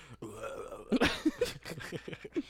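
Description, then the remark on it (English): A loud, drawn-out burp rumbles, followed by a few short guttural bursts and breathy sounds tapering off. “I fucking burp, dude.”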